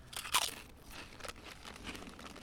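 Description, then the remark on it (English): A sharp, loud crunch as a crispy snack with an artificial cheese dusting is bitten, followed by a couple of seconds of softer, crackly chewing with no talking. “Well, for me, when I had them, I felt like that they'd put like the cheese dusting on that the What's It's had, but it was like done inconsistently, so it was like in little clumps.”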